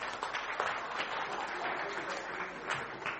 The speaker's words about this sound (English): You go sit down. Thank you. Shall we give you a round of applause?